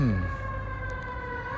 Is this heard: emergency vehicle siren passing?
yes